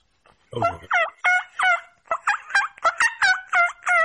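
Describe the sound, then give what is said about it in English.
A turkey gobble imitated on a diaphragm call: a rapid, loud run of warbling, pitch-bending notes in two bursts, with no talking over it. “So were you using turkey calls when you first started out to try to make elk sounds?”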